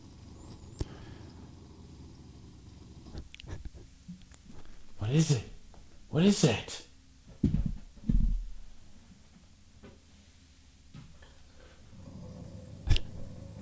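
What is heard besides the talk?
dog barking and growling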